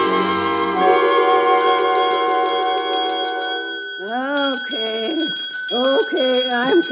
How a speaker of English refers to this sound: I'm coming. Sick and tired. I'm sleeping and hearing the bell.